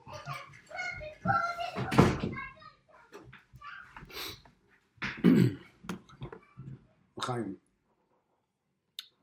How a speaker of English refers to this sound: One second, my door just opened, as is the staying at home situation.